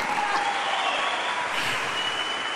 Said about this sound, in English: If you win, you thank the best PR staff in the league, Calgary Flames. Can you give them a clap a little bit?